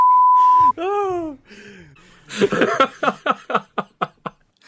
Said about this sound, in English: So even though that was absolutely innocuous, I'm going to beep it out to make it sound like it was something bad. Because I can. I have the beep.